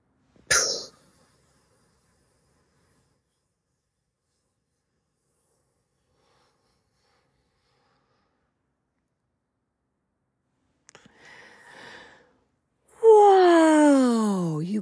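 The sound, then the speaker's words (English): A deep breath taken during a guided prayer breathing exercise: a quick intake, a long held silence, then a soft airy breath and a loud, voiced sighing exhale that falls in pitch. “Guys, oh, the power of breath, the power of breathing, the power of accepting the life that He breathed into you.”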